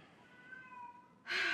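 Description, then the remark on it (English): A cat named Luna meows: a drawn-out, wavering cry that suddenly swells into a loud, harsh yowl at the end. No one speaks. “You that know, feral cat in she's there.”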